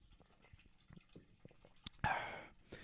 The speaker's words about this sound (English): Let me get a drink of water from my open glass.